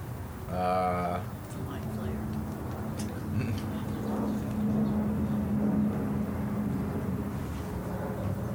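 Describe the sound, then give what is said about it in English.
A wide waterfall, about 15 to 25 feet wide, roars steadily and loudly throughout, a dense, unbroken rush of falling water, with a brief tonal sound near the start and a faint low hum partway through. “You can hear the waterfall so much more clearly and resoundingly. Kind of sounds like a plane going by.”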